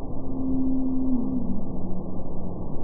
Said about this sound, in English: By the way, that's sped up 10 times so you can hear it. Over the years, these eavesdropping biologists have noticed a mysterious trend that certain blue whale calls are gradually lowering in pitch over time.